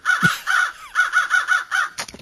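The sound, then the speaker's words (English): Several crows circling overhead caw loudly, a rapid run of about seven harsh, raspy calls in quick rhythm, ending with a brief flutter of noise. “As you approach the catnip plants, the crows relieve themselves on you, driving you back.”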